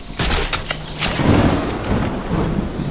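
A rain and thunder sound effect: steady rain hisses throughout while a deep thunder rumble rolls underneath, swelling in the middle. Loud, with no voices.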